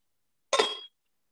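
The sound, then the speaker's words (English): A single short clink of a glass of water being picked up, fairly crisp with a bright ringing edge, lasting under half a second in otherwise silent surroundings. “Now again you take water in a glass. Suppose ye glass hai, steel ka glass, kaach ka glass, any glass will do.”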